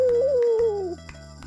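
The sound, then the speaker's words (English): A person imitates a wolf howl when asked to during a retelling of the Mexican tale The Lamb and the Wolf. It is one drawn-out, wavering vocal tone that rises slightly, then slides downward and fades out after about a second. “Can you howl like a wolf?”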